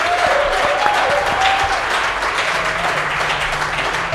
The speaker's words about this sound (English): Well, I'll give these guys a big round of applause for joining us.